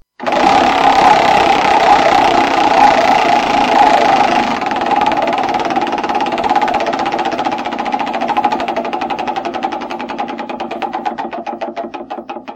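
A prize wheel with slots including 100 and double zero is spun hard, with a loud, rapid ratcheting clatter that blurs into a buzz, then gradually slows into distinct, spaced-out clicks as it winds down. No one speaks.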